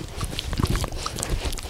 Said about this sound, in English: Okay. That's enough from you. That's our podcasting dog.